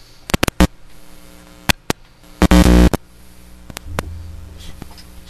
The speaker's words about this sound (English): Oh, it's the cord, yeah. Or there's a hum. Yeah, it is. There's a hum in the studio again.